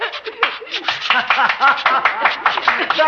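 Rapid, uneven finger snaps crackle sharply during a bolero dance, over a busy run of voices that sound like giggling and vocalizing. The snapping is quick and continuous throughout.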